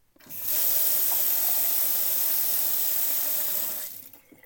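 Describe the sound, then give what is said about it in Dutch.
A kitchen tap runs steadily into a pan for about three and a half seconds, filling a pan of water to set on the stove for a bain-marie, an even rushing of water that starts and stops abruptly, with no talking. “Dus ik ga vast eerst even een pan met water aanzetten.”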